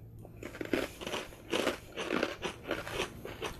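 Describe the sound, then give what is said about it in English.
Crisp crunching as someone chews protein barbecue puffs, with repeated bursts of crackly bites in an uneven rhythm and no talking. “She's going to hear me chew the whole time.”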